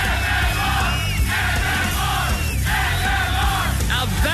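A large crowd cheers and yells continuously, a dense wall of shouting voices with whoops rising above it, staying loud and steady throughout.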